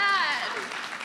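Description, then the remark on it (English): A short burst of audience applause, steady dense clapping with a high falling whoop or cheer over it at the start, gradually easing off. “All right, let's give her a round of applause.”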